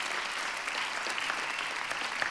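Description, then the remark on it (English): An audience at Life Church of Mobile applauding steadily as a clap offering of praise on Christmas morning, a dense, continuous wash of many hands clapping at an even loudness throughout, with no voices standing out. “Would you give him a clap offering of praise on this Christmas morning?”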